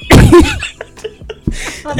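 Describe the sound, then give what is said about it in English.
A loud, forceful sniff into the microphone bursts out at the start, followed by quieter breathy noises and a second, softer snuffling sniff near the end. No one speaks. “Sniff so hard in the mic.”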